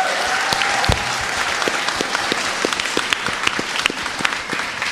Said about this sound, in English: So I'd love to give a big round of applause to everybody here.